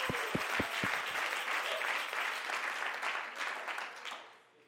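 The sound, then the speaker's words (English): A church audience claps hands together to the Lord in a dense, steady wash of clapping, with a few rhythmic low thumps at the start. It carries on without voices, then fades out at the end. “Come on, everybody, clap your hands to the Lord together.”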